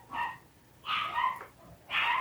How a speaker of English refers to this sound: They get to hear a bunch of puppies barking. We must make a disclaimer that there is nowhere in either of our homes that we can work without dogs barking.